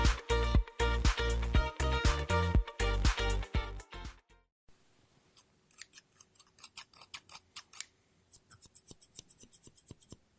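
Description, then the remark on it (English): Scissors snip and cut paper, starting with a burst of loud, crisp rhythmic snips, then after a brief pause a quieter, quicker series of small clipping sounds, made as ASMR cutting sounds with several different pairs of scissors. No voices. “Scissors No Talking Snips and Cutting Paper”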